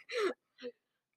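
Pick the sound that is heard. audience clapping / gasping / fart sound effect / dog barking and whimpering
gasping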